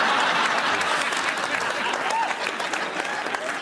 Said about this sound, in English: That applause lasted longer than the whole FBI investigation.